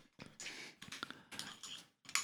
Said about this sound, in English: So basically, you got the weed sitting in there. And you just got to crunch it up with your scissors.